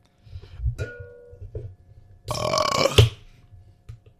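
A loud, drawn-out burp rumbles for about a second, preceded by a couple of softer throaty gurgles, with no one speaking.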